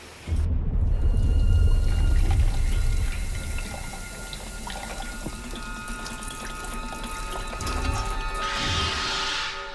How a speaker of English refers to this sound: Formaldehyde. Dirty formaldehyde. Pour him into the sink.